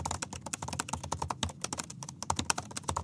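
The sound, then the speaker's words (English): Rapid, steady typing on a new Mac laptop keyboard, a dense stream of light, crisp key clicks with no voices over it. “Let's listen to this keyboard.”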